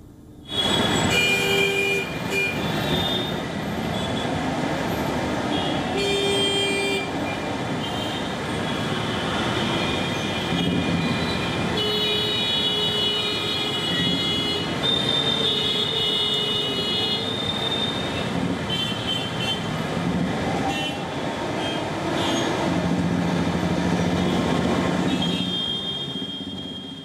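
A steady, dense roar of congested road traffic in New Delhi, India, fills the whole stretch, loud, with sustained high-pitched horn-like tones and squeals cutting through the constant rumble.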